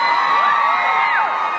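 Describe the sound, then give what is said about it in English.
A crowd of women in an audience screams and cheers loudly and continuously, high-pitched shrieks and whoops overlapping in a dense, sustained burst of excitement with no speech. “I'm looking over, I hear women screaming, and I look over, and my wife is like, sitting there.”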